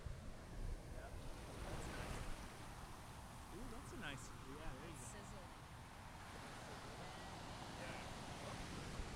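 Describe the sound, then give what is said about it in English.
Ocean waves break on a beach in a steady, rushing roar, with wind buffeting the microphone held up to the waves and faint voices briefly audible underneath. “All right, we got to hold it up to the wave.”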